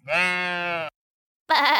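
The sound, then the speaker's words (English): A sheep bleats twice, loud: a long, steady baa, then a short silence and a second, quavering bleat that gets cut off. “Okay, so what do sheep say when their photo is taken?”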